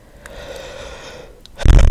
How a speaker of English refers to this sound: Sorry, I just yawned. It's late. It's 12:37.